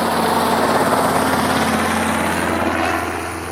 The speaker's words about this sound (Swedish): då kan du höra en helikopter på håll